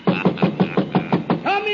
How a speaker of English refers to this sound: In a moment now you'll hear me knock on Santa's door. And he'll unlock it.